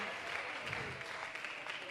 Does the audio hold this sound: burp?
no